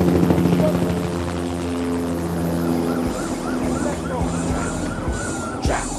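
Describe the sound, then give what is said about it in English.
A helicopter's rotor drones steadily overhead, loud and continuous, mixed with a busy low rumble and faint siren-like tones, with brief murmuring voices underneath. “Shoot the helicopter too, bro.”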